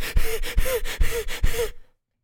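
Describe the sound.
A voice imitates a man's fast, heavy panting, sped up as if in fast motion, after chopping a piece of wood: four quick rhythmic breath cycles, fairly loud, each with a rough huffing exhale, then the sound cuts to silence.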